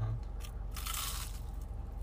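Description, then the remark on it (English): A crisp crunch of biting into a filled churro with cinnamon sugar: a brief crackle, then a louder, longer crunching burst as the bite breaks through, with no talking. “The crunch on that one. That is a ridiculous crunch.”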